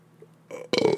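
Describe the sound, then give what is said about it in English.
A loud, low, rumbling burp that starts with a short build-up and then erupts into a raspy, drawn-out belch, heard on its own without talking. “But, excuse me. Man, that tasted like that Taco Bell crunch wrap.”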